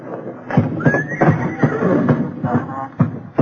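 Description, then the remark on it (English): Old horses tied up in a barn stall whinny and nicker, with a rising neigh early on and several dull hoof thumps and shuffles scattered throughout. No one speaks. “All those old nags tied up in that stall?”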